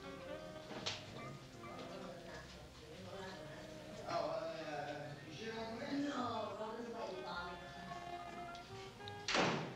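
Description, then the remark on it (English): A sharp knock at an apartment door in the film Rosemary's Baby, Minnie arriving with chocolate mousse desserts, lands near the start, and another firm thud comes near the end, both standing out against a steady bed of voices and music-like tones. “So there's a knock at the door.”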